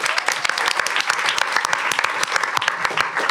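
A round of applause from a group: dense, steady clapping with many overlapping sharp claps, fairly loud and sustained throughout, with no voices standing out.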